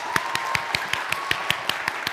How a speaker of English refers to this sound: So when I say 1, 2, 3, I want you guys to give yourselves a hand clap for making it this far, okay? 1, 2, 3, let's go!